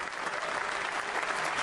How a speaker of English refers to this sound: Just, in fact, we're going to hear some of the applause. There is a standing ovation in the House of Commons.